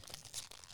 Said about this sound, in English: Whoa. Before we start, you can tell me what that rustling noise is. Yes. Don't tell me. Do you have a snack this time? No. Just kidding. Yeah, I have a snack. Cheez-Its to be exact.